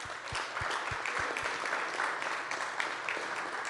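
An audience at a Men's Leadership Network gathering breaks into a round of applause after a prayer, a dense, steady wash of many hands clapping for about four seconds, with several heavy, evenly spaced thumps at the start.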